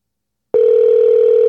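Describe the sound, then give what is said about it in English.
A steady, loud ringing tone of an outgoing internet call to a guest cuts in after a brief silence and holds one unbroken pitch until the end, with no voices present. “It's ringing.”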